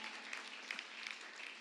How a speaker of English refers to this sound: Give God a hand clap one time.